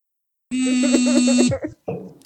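A mobile phone vibrates with an incoming call from a friend, a steady, low, droning buzz for about a second while voices talk over it, then the buzz stops and the chatter continues.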